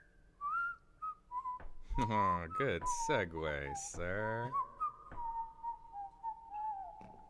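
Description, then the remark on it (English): Someone whistles a wavering melody, a thin pure tone sliding between notes, while a man's voice breaks in with a short remark partway through. “it could be as simple as whistling.”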